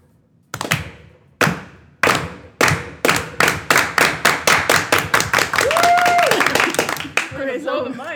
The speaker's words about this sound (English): The slow clap is tough.